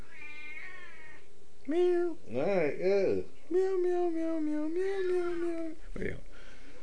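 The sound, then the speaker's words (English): A cat meows repeatedly, a string of drawn-out, wavering yowls with rising and falling pitch, loud and insistent, ending with a brief scuffle. “Now my cat wanted to join.”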